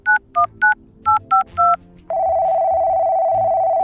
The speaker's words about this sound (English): Now, to voice activate the sat phone located in my dog detective collar, which is also a fancy bow tie. I do love a good gadget. Activate sat phone.